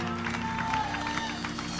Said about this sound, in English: Come on, give him a hand clap and shout in this house. Hallelujah.